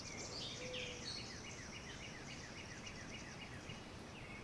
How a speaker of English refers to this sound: I can still hear the birds.